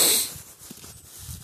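A dog gives a sharp, breathy snort, then keeps sniffing and snuffling quietly at the ground for a moment afterward.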